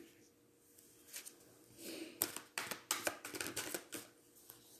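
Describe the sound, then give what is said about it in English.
Crisp bursts of tarot cards being shuffled, a quick series of papery riffles and slaps that start softly and grow busier, with no talking. “Put this down and I'm a shuffle.”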